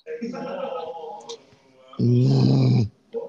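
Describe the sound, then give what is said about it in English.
A deep, loud growl bursts in for just under a second, coming right after someone speaks, with a short trace of voice following it. “He just growls.”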